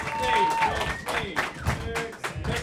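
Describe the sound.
A short burst of audience applause welcoming a guest on the show Dr. Fix Me, uneven claps with sharp bursts rising and falling, mixed with voices calling out over the clapping.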